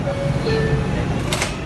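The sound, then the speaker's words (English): Inside a New York City subway car, a steady rumbling hum carries a few tonal chime-like notes, then a sharp hissing whoosh as the doors slide shut and the train starts moving. “I love the New York City subway.”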